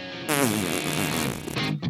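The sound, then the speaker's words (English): A voice imitates a fart against a chair, a loud, buzzy, wobbling raspberry held for about a second and a half, with no other talking. “And he just like, he just farted. Like, listen. It was like up against the chair.”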